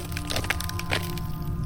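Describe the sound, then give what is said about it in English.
A bone crunches underfoot in a few sharp, brittle cracks spaced irregularly over about a second, set against a steady low hum with no voices. “Then a bone crunched under his foot, and the joke didn't seem that funny anymore.”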